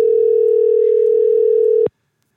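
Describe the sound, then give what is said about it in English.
A single steady electronic ringing tone of an outgoing phone call waiting to be answered, one sustained burst of about two seconds that stops abruptly, heard clearly on its own with no talking. “It's ringing.”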